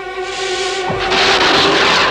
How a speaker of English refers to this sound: They've opened fire. Look out, Stingray. Oh, no, yeah, that's... same explosion from episode 2.